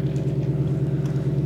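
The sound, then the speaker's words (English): A car engine rumbles steadily outside as the car slowly moves off a driveway, a low, even drone that holds at a constant level without fading, with no voices over it. “Probably waiting for the car to leave.”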